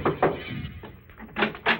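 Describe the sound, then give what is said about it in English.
Knocks on the wooden door of a big house at night: two quick raps, a pause, then two more, each a short dull thump with no voices. “I knocked at the door.”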